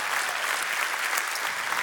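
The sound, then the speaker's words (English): An audience at a church service claps steadily for departing friends, a dense, continuous patter of many hands at moderate loudness with no voices standing out. “Give these friends a round of applause as they go today.”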